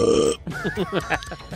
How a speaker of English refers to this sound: operator, as being made by the defendant as he was, quote, audibly belching down the phone line.